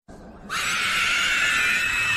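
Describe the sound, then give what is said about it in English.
A piercing, high-pitched shriek bursts in after a brief quiet moment and holds steady and loud, a harsh, eerie Nazgul scream from Lord of the Rings used as a wrong-answer buzzer effect in a Lord of the Rings quiz. “You'll get a Nazgul screaming in your ear.”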